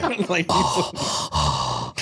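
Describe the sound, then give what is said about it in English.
Heavy, intense breathing: three loud, rasping breaths in quick succession, each a harsh rush of air, with a brief vocal scuffle just before them. “Intense breathing.”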